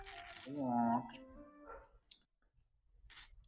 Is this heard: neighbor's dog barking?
yes